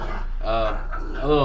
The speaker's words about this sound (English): Hey, what you're hearing there is my dog, Frank, the Tank Delgado,